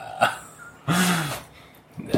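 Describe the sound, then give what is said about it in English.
A person's voice imitates the croak of a weirdly dog-like giant salamander: a short clipped grunt, then one longer, raspy, throaty croak that drops in pitch, and a final brief burst. Fairly loud. “It's a croak, like it croaks kind of like, oh, it was like, Bella.”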